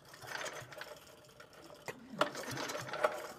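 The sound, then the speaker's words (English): A hydrogen engine being given a practice pull-start by its rope with the hydrogen not turned on, so it does not fire: a few seconds of rapid mechanical whirring and clattering, with sharp clicks near the end, and no engine catching. “I'm going to just get a hold of this rope here and do a practice pull so you can see what we're going to do.”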